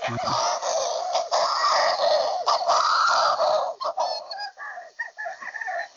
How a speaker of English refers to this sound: Amazing noise. And the thing is, you know, when you've got a couple of 100,000 birds making that noise, there's nothing else quite like it anywhere on earth.